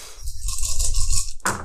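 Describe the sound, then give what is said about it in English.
Seven dice clatter and rattle together in a quick, continuous burst of bright, hard clicks, lasting just over a second before stopping abruptly, with no one speaking. The dice are rolled for a fireball. “I'm going to say difficulty's only 3 at this point. Still 7 dice.”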